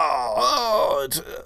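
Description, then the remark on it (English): A person's voice imitates Denver howling: one sustained, wavering moan that rises and dips in pitch for over a second, then breaks off with a short breathy huff. “Denver is over there howling.”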